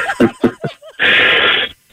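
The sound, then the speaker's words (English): A burp: a few short, low, croaky throat bursts followed by a longer raspy, breathy exhale, loud and with no talking over it. “That burp tastes really badly.”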